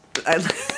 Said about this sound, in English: clap for your own.